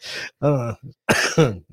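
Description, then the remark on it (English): A series of coughs and throat clearing, several rough, harsh bursts in quick succession with short pauses between, loud, with no talking. “We need a cough button.”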